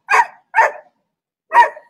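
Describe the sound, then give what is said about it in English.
Three sharp dog barks, two in quick succession and a third after a short pause, loud with no one talking. “What bark is that? That's not the horny bark.”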